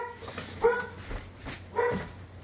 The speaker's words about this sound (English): My dog's barking. I think somebody's at the door